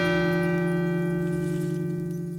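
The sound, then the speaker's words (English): A clock bell tolls, striking twelve o'clock, with a deep, resonant ring, its rich overtones humming steadily and fading only slightly as the note lingers, with no voices present. “12 o'clock comes.”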